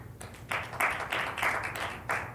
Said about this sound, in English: Go ahead and clap for me if you think that the smart toilet is fake.